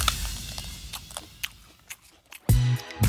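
Wet chewing and crunching of lobster, with scattered sharp cracks and clicks, then two heavier, louder bursts of munching near the end. No one speaks.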